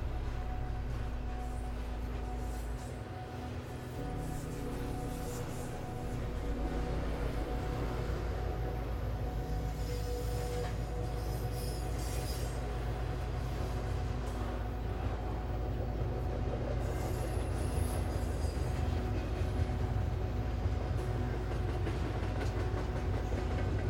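A train rumbles steadily with a heavy low-frequency drone and faint metallic rattles, sustained and fairly loud throughout, as it leaves the station at Mountain Grove, with no voices present.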